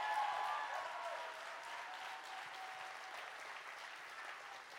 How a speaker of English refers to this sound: Clap your hands well right now.